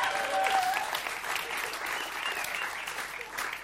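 An audience claps steadily for a few seconds, a dense patter of many hands at an even, moderate level with a brief whistle-like tone near the start.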